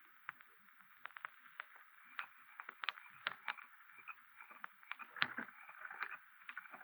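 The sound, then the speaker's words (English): Oars dip and splash as a boat is rowed across a calm river, with soft irregular knocks and trickles at a gentle, unhurried pace, fairly quiet and with no one talking. “I know where there's a boat. We'll get out on the river.”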